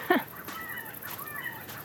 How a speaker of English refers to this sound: Yep, there's a group of grey-crowned babblers. They're a small bird that you often hear before you see because they babble, babble, babble, babble, babble, babble, babble at each other all day.